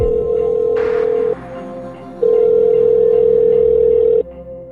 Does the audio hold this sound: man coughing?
no